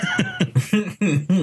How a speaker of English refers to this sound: Yeah, I mean, you might want to get that cough checked out.